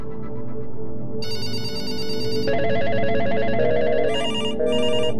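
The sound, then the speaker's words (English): Several telephones ring at once in a power company's control room during a power grid failure, new ones joining every second or so until a dense, overlapping chorus of electronic trills fills the space, loud, with no talking. “And they started to get phone calls.”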